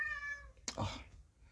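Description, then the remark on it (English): A single drawn-out meow from a tuxedo cat wanting to be let out through a door, clear, rising then falling over about half a second, with faint room noise and a brief tonal hum before it. “We have my lovely tuxedo cat Felix, who wants to get out, so I will have to open the door for him”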